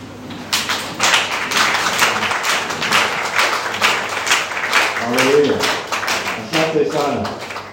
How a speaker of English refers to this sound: I heard it's Pastor Appreciation Day. Nimesikia kwamba ni siku ya wachungaji. So I want everybody to stand, and we're going to just clap for the pastors here. Kwa naomba wote tusimame tupige makofi kwa ajili ya mchungaji.